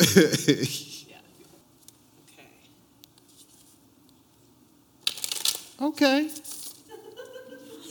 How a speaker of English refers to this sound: I'm going to shuffle real quick and pull us a card.